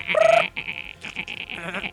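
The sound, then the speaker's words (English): A voice mimics a dolphin, starting with a squeaky, bleat-like whistle and then a fast run of high, chattering clicks and chirps, with no talking. “No, he clicks like dolphins.”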